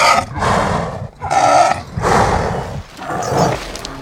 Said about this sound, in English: What I really liked as an inhale was a tiger, but the exhale wound up being a Canadian lynx. So I wound up fabricating breaths, inhale, tiger, exhale, lynx. Inhale, tiger, exhale, lynx.